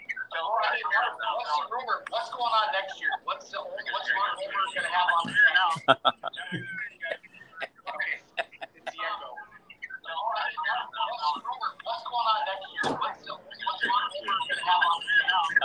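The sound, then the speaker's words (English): A thin, band-limited phone line carries garbled, overlapping voices that seem to repeat back on themselves, with choppy dropouts and sharp clicks partway through, as if echoing and feeding back. “Okay, it's the echo.”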